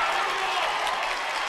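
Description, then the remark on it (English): A steady wash of crowd noise from Eagles fans at a basketball game in an arena, cheering and clapping in a dense, continuous roar that holds at an even level without any clear peaks, during the third quarter. “And the Eagle fans trying to make some noise.”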